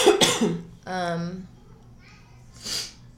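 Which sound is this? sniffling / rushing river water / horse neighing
sniffling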